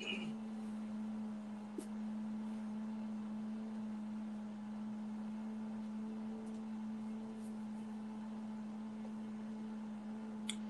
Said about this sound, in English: Okay, my roommate is using his blender. Well, I'm going to get something to... Jesus, can you hear that on your end? Not really. It's just like a faint buzzing.